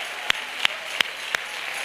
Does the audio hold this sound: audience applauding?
yes